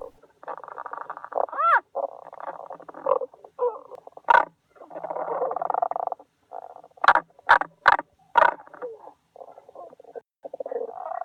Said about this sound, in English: It's probably those barking frogs.